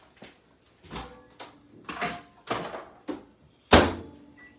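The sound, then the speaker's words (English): A microwave door is handled as a sausage is put inside to cook, in a series of clunks and thumps, with several softer knocks leading up to one sharp, loud slam as it shuts near the end. “Here we go, put it in the microwave.”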